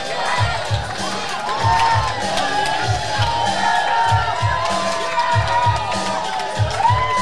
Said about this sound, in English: Sexy Angels have a lot of heat on them. Oh, and they're coming prepared. Sexy Angels. The crowd is lit for the Sexy Angels.